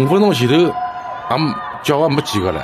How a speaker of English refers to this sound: It has, listen to this. These are the people screaming in hunger.